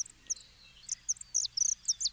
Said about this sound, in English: Manu Minute, Hawaii Public Radio's new feature on Hawaii songbirds, is now a podcast. Listen to the sounds of island birds and learn about their environment and conservation.